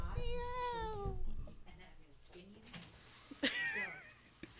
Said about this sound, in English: Before we continue, my cat is like desperate trying to get out, and I don't want him to howl.